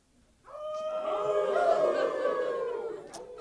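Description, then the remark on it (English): A crowd of men in a church audience imitates a wolf howl together, a loud, sustained chorus of overlapping pitches rising in after a brief pause and holding steadily for about three seconds. “Now, I just want, for my sake, for all the men in here, can you just give me a nice howl?”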